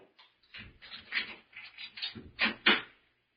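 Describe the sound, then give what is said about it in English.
A key rattles and scrapes in a lock with a run of metallic clicks, then two louder clunks as the front door unlatches and swings open. No voices. “Give me your key. I'll open the door.”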